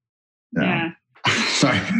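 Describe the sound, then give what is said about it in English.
A person yawns aloud in two voiced, groaning stretches, a brief one followed by a longer, louder exhale, with no other talk. “Can answer a question when I'm yawning.”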